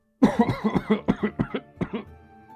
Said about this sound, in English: As I wake up, I'm actually coughing.